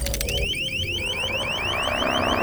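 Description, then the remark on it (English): A sonic weapon called the Sonic Disruptor blares a loud, piercing electronic shriek: rapid, repeating high-pitched upward sweeps pulsing steadily over a low rumbling hum, with no voices. “I call it the Sonic Disruptor.”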